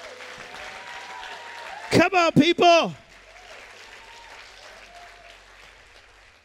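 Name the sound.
audience clapping and cheering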